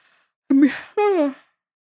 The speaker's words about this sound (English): I always yawn on this because I'm talking too much and I try to fight it because it's not you, it's me. It's because I'm talking too much.